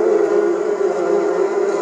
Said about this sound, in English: Bees. A whole swarm of the bees.